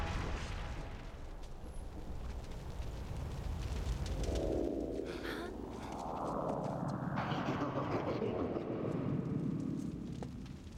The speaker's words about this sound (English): That's an explosion.